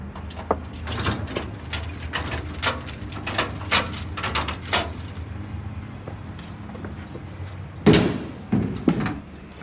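Keys jangle and scrape in a lock for several seconds, followed by a heavy clunk as the bolt turns and the door of a memorial's book house, where the memorial books are kept, is pushed open, with no talking.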